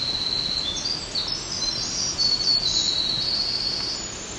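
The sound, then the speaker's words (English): A black-throated green warbler sings a long, unbroken run of rapid, high-pitched trills and twitters that carry on throughout, loud and fairly prominent over a steady background hiss. No voices are heard. “Another bird.”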